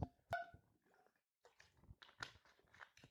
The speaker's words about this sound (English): I'm so glad that most of you listen, because I just deep-throated that water bottle on accident. I tend to do that sometimes.